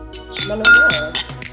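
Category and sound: household object, glasses clinking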